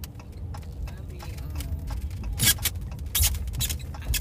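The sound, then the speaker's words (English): A car rolls along with a steady low engine rumble, then bangs over a big bump in the road, two sharp rattling jolts a moment apart as the cabin and rear of the car shake, with faint clicking ticks throughout. “Damn, that was a big old... They need to fix that. About to tear my whole back of the damn car up.”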